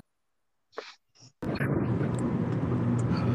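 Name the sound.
car interior noise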